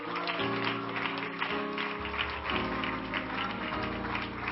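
A crowd claps together steadily, clapping their hands unto Jesus: a dense, continuous patter of many hands over sustained organ or keyboard chords, fairly loud throughout.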